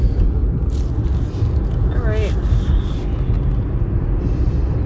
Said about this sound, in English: We're in the car. We're going on a fucking drive.